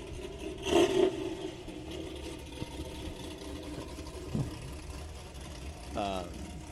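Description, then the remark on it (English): The V8 engine of a GTO, one of two matching GTOs, idles with a loping, uneven rumble, low and steady throughout, with a couple of louder swells as loud cars pull away; faint voices come through briefly. “A lot of loud cars are leaving right now. That GTO. Like matching GTOs, two of them. Yeah, it's got a nice lope to it.”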